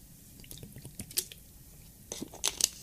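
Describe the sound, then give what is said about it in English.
Someone drinks water from a plastic water bottle: soft crinkles and wet, squishy sips in scattered bursts, growing louder near the end, with no talking. “But I'm going to drink this fucking water.”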